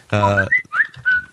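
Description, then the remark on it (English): A short whistled melody: a few clear, sliding notes rise and fall in quick succession, following a brief buzzy, reedy tone at the start, with no talking. “Yeah, I hear that whistle and I think to myself, man, I got to get my turtleneck and my sailor cap.”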